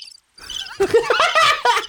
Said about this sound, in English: Crickets? Crickets.